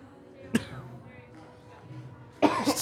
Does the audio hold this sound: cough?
yes